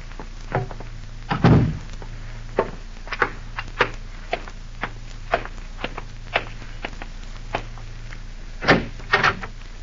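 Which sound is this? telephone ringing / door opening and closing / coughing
door opening and closing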